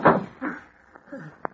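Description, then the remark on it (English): A door shuts with a short, sharp knock near the end, after a few muffled voiced sounds and creaky tones, moderately loud. “Inside and close the door.”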